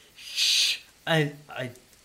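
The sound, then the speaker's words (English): A person mimics a whistle with their voice to call a three-legged corgi named Biscuit in a tabletop role-playing game: a breathy shushing hiss first, then two short, hooting voiced tones that slide in pitch, moderately loud with no other talk. “I really don't know how to do the whistle thing.”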